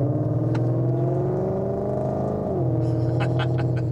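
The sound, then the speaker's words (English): A maroon Ford Mustang GT with a V8 accelerates with a deep, throaty exhaust roar, its engine note climbing steadily, dipping briefly as it shifts gears, then pulling hard again. No one speaks. “They have a nice exhaust. I like the sound of the Mustangs.”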